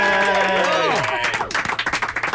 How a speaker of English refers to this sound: And I am so pleased to say, joining me right now, live in the studio as promised, it is, and I want a round of applause here, everybody, it's the band of Mum and Dad!